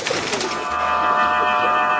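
Steady, layered whistling tones hum from pigeon whistles carried by flying birds, a continuous airy drone with several pitches held together over a soft rushing background, no voices.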